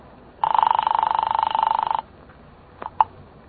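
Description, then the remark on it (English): One long, buzzing telephone ring sounds on the line of an outgoing call made from the phone on Manny Ryan's desk to Hellman at Homicide, a steady warbling trill lasting under two seconds, then a couple of short clicks like the receiver being picked up. No one speaks. “I grabbed the phone on Ryan's desk, and I called Hellman.”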